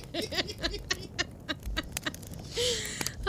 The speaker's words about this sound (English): Oh, man, I'm going to have to stretch out this campfire sound. So long.